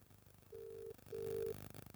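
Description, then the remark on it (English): Two steady electronic phone tones sound in sequence, each lasting under half a second with a short gap between, like a call ringing out on the line, over low background noise. “Who are you calling?”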